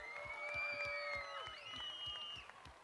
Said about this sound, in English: Can we just give them a big round of applause?